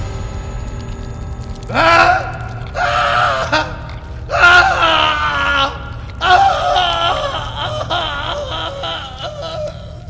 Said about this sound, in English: In his chair near the fire, as the echoes of the last scream shrilled through the ancient castle, a sinister figure sat.